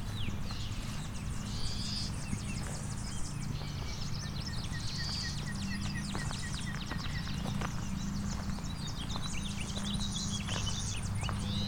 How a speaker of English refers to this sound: Buzz, buzz, buzz, that's clay-colored sparrow. Not very common around here.